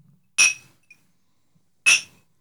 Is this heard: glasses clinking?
yes